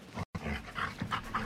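A male dog pants in quick, rhythmic breaths, a steady run of short huffing bursts after a brief gap near the start, with no voices.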